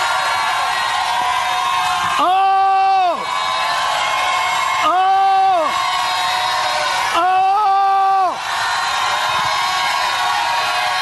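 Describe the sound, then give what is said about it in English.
An audience gives a loud "lion shout", a continuous, roaring wall of voices, with three long, sustained yells rising above the din at steady intervals. “I want to hear a lion shout here tonight.”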